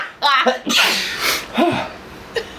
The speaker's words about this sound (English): Now I'm sneezing.